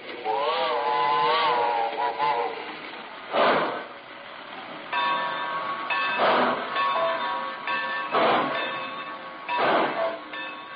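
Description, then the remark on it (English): A steam train whistle sounds with a wavering, multi-toned blast, then steady whistle tones continue over loud, rhythmic bursts of hissing steam as the Great Valley Railroad weekend flyer pulls into Lelandsville station, stopping on signal. “Lelandsville was a whistle stop for most Great Valley trains, but the weekend flyer stopped for us on signal.”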